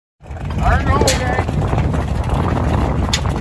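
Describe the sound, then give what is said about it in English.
A steady, loud low rumble of motorboat engines at a Trump boat parade drones throughout, with brief shouts or whistles rising over it near the start. “Over Labor Day weekend, I really wanted to go to a Trump boat parade.”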